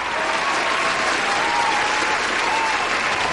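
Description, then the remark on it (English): Sustained crowd applause sound effect played after a song, a dense, even wash of many hands clapping at steady loudness throughout, with no talking over it. “I've got the crowd in, just for good measure.”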